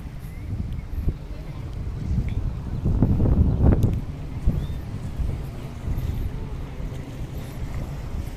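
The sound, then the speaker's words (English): Steady wind rumbles over a low wash of surf at a beach, heard from a jetty with open ocean on one side and the beach on the other. One fuller wave surges up midway before easing back into the constant blustery roar. “And there's open ocean on one side and the beach on the other.”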